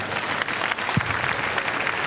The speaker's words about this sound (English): Let's clap for them.